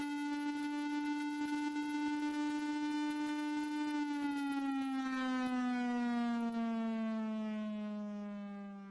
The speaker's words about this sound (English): That nightmarish sound comes from a truck-mounted sonic gun developed by the Chinese military. It causes nausea and vomiting with prolonged exposure and is apparently being used to harass Indian soldiers on the line of actual control,